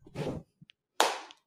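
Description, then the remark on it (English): A single sharp hand clap, made to sync a recording before it starts, cracks out loudly and rings off briefly, preceded by a softer, muffled thump or rustle and a couple of faint ticks. “I just have to clap.”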